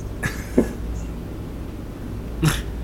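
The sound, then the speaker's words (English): Two short, harsh coughs with a pause of about two seconds between them, the first a little longer and rougher, over a low steady background hum with no talking. “Alexa, did you cough?”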